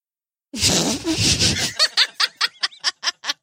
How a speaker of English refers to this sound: And if the mic didn't pick that up, it was the smallest of toots. That fart had some power.